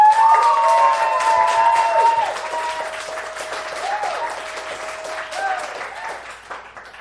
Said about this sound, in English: If you believe the winner of this debate was Erica Dreisbach arguing for banning Horny Forever, please applaud right now.